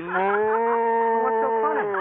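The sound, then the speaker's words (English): A cow moos once, a long, steady, drawn-out low call that holds for about two seconds, loud, with no other sounds around it. “Now, be a good moo cow and don't try any tricks and we'll get along swell.”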